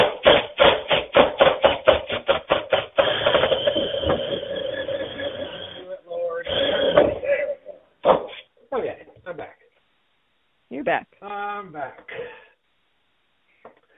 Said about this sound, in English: Having a hard time drilling. I just drilled the top part where the shower head goes.